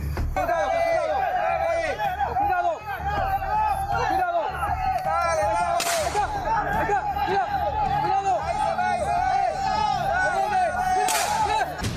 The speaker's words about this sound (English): Oh, I love how one of the villagers is cursing and they beep it out. And it's a very high intensity chase through the jungle, and everybody's shouting and they're waving their flashlights and people are firing guns